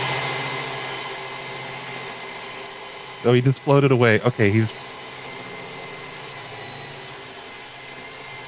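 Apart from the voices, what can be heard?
power drill running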